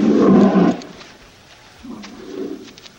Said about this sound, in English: You think it's a dog? Oh, shit. What is it? Yeah. It's a sheepdog or something.